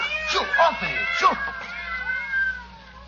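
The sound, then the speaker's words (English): About half a dozen cats locked in together meow and yowl over one another in a steady, overlapping chorus, with rising and falling wails, fairly loud throughout. “Yes, some fiend, knowing her deadly fear of cats, has locked her in here with half a dozen of them.”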